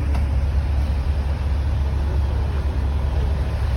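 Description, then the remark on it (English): A steady, deep engine rumble from big parked trucks idling, continuous and fairly loud with no pauses, heavy low-end drone filling the whole stretch and no voices. “So here's the trucks.”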